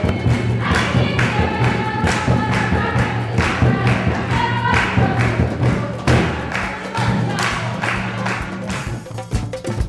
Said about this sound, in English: In Burundi, not every day you can hear drum, but it's every other day you can hear drum. Somebody's drumming, somebody's drumming.